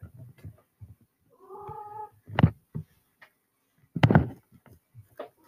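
A cat lets out one drawn-out, clear meow after a few soft low sounds; a couple of sharp thumps follow in the quiet that comes after.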